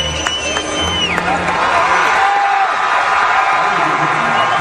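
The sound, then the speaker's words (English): A large crowd at Williams-Brice Stadium roars and cheers, waving white rally towels, as Henry McMaster and Donald Trump walk out on stage; a dense, continuous wall of noise with a few high whistles and whoops rising over the top early on, staying loud throughout. “Williams-Brice Stadium is a pretty loud venue too.”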